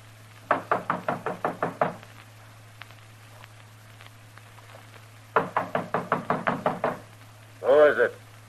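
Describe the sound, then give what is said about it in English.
Two rapid bursts of firm knocking on a door, about eight sharp raps each, separated by a pause. A brief voice follows at the end, announcing Marshal Dillon and telling Haney to open up, over a steady low hum. “Marshal Dillon, Haney. Open up.”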